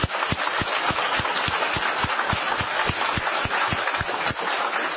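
A crowd breaks into a steady round of applause, dense clapping at an even loudness for the whole stretch, with a few sharper claps standing out in a quick, regular beat. No one speaks.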